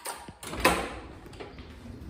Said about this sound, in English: I'm going to just show you a little thing here, and that's opening this door. Oh, hang on. Press the button properly.